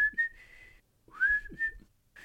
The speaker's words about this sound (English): Oh, no, it's too high for my whistling.